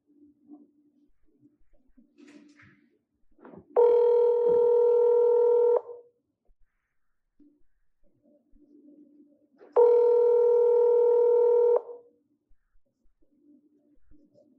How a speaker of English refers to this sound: So here goes the phone call.